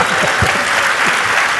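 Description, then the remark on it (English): A brief burst of audience applause: many hands clapping in a dense, steady patter that fills the short moment at a fairly loud level, with no voices over it. “No applause for liberalism?”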